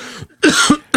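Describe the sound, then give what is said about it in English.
A loud fit of harsh coughing: one rough cough, a brief pause, then a longer raspy burst, with another cough starting right at the end. No speech. “I'm going to have to mute the hell out of this shit so I don't cough all over everybody through your radio, through your speakers.”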